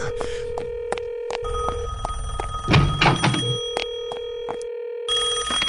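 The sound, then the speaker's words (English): A telephone down the hall rings insistently in repeated bursts, a bright metallic jangle with steady tones, accompanied by a few clunks and a rumbling thud midway, with no voices. “Crying out loud, let me just go down the hall and answer it.”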